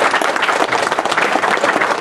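A crowd applauds steadily, many hands clapping in a dense, continuous wash of sound that stays loud and even throughout, with no voices standing out.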